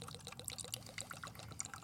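Vodka glugs out of a bottle into a glass in a quick, rhythmic series of gurgling pulses, fairly quiet, with no voices.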